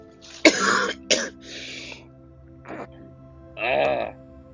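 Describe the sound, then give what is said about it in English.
A person who is sick with a cough coughs sharply twice, followed by a rough rasp, a short hack, and a drawn-out throat clearing, all loud and isolated with no talking. “Still got the cough.”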